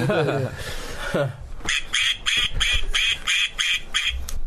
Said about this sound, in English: Brought to you by a duck. Obviously.